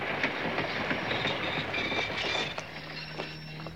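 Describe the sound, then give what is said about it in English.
A train bound for Cliffordville rolls along the rails with a steady, loud rumble and irregular clacking beats, joined partway through by a thin high-pitched whine and a low hum; no one speaks. “The old Feathersmith is looking at his watch on an airplane in his time, then all of a sudden, he's looking at his watch as a much younger man on a train bound for Cliffordville.”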